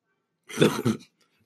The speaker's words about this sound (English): Fat chicks coughing.